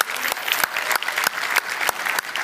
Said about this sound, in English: Are you guys excited to be here this morning? Come on, can we just give the Lord a clap of praise?